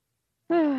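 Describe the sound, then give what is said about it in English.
After a moment of silence, a voiced yawn begins abruptly, a loud, drawn-out vocal tone sliding slowly downward in pitch, cut off while still sounding. “I need to let out one more yawn.”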